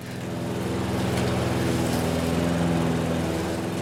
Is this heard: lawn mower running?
yes